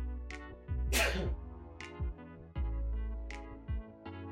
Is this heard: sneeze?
yes